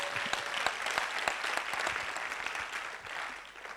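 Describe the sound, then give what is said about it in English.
A church audience claps together in a clap offering to the Lord, dense, sustained applause, a steady wash of overlapping handclaps with sharper individual claps popping out, holding at a fairly loud level before easing slightly at the end. “Oh, give the Lord a big clap offering.”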